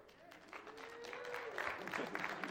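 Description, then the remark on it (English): A group of adults clapping at a church service: dense, steady applause that swells slightly louder toward the end, with a faint murmur of voices underneath. “I had a whole bunch of adults clapping, and I'm staring at two of the youth, and they're just looking back at me.”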